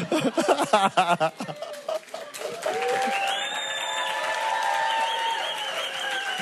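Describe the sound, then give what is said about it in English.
A brief, lackluster round of applause with scattered voices and some cheering from a crowd, followed by a steady, sustained hum of tones that carries on to the end. “That was a weak round of applause.”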